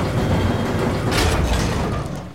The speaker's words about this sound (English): Attention, please stand clear. Sealing hydroponics pressure doors in 3, 2, 1.